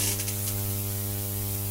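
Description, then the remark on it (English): A steady electrical mains hum on a telephone line drones low and constant, its evenly stacked harmonics buzzing with a faint static hiss on top, with no voices over it. “There's a hum, right? There's a hum. You hearing a hum?”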